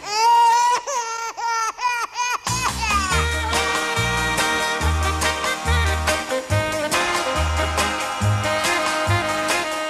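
A baby in a cradle wails in a few loud, rising-and-falling bursts, then a full band of music with a thumping bass line comes in and carries on.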